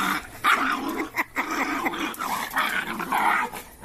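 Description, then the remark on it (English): A dog growls steadily, breaking into several sharp barks and yips over about four seconds, fairly loud with no voices. “You gotta beat that out of a dog, mama.”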